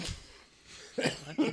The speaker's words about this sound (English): I can't stop coughing. Oh, my God. It's everyone's sick right now.